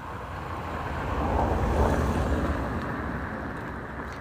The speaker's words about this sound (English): Here's another car.